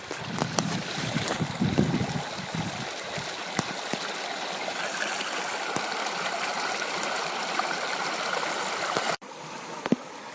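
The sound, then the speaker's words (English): A stream rushes steadily close by on the Colorado Trail, a continuous bright splashing hiss that fills the whole clip, with a few low thumps and bumps near the start before a brief cut near the end. “It's the Colorado Trail, July 6th, and boy, when you are out next to a great water source, all the bugs want you.”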